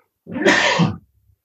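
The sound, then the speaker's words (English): A single loud sneeze bursts out abruptly, a broad noisy explosion lasting under a second, followed by quiet. “Oh, excuse me, I'm going to sneeze.”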